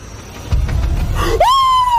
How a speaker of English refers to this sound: He's screaming like a girl.